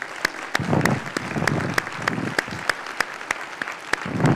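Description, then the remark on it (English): A church audience applauds its standing military veterans with steady, dense clapping that holds at a moderate level for several seconds, individual sharp claps standing out from the wash of hands. “Those who are serving today, I think that deserves a round of applause for sure.”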